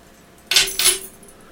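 Keys on a keychain jangle in two quick bright bursts, a shimmering metallic clatter of jingling keys with no voices, then settle back into quiet.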